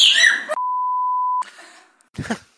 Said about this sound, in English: Now, I don't know exactly what that parrot said, but if you have to bleep a bird to play it on television or on radio like here, well, you know it's something not so great, right?